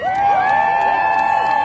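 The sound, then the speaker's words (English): A large rally crowd in New York, stretching up to 86th Street, cheers loudly and continuously, a dense wall of overlapping voices with shouts and whoops rising above the roar, steady throughout. “The crowd goes all the way up to 86th Street at this point.”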